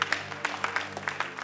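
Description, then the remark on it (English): An audience claps in a scattered, uneven burst of sharp hand claps, steady but not in unison, with a low constant hum beneath and no one speaking. “I'm not saying anything to clap.”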